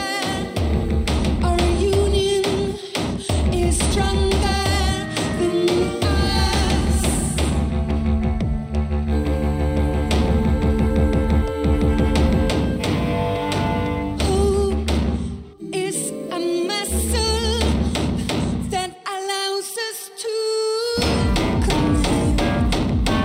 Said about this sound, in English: Where it's just, you have a really, really cool beat with the drums and everything. You have these really odd setting keyboards in the background that are off key. So it's like making you want to like feel uncomfortable with it